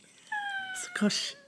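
A cat lets out a drawn-out, slightly falling yowl lasting about a second, broken partway through by a brief dull thud and rustle as a book is dropped on it, fairly quiet.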